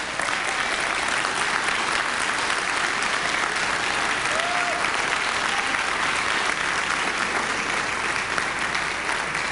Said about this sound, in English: When we're commanded to praise God, we're commanded to applaud God. Come on, let's applaud God today.